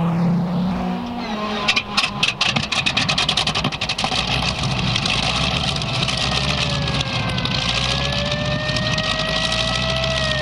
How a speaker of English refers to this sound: Just outside town, a thick pre-dawn fog descends upon Mercury Airfield. Compelled by the red light and siren of the approaching police car, Captain Jim Hudson quickly climbs aboard a small airplane. Reaching forward, he presses the starter.